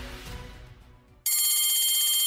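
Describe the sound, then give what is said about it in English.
A low rumbling background gives way abruptly to a loud, shrill electric bell ringing continuously with a rapid metallic trill that holds steady until the end. “The bell rang, and I was so excited.”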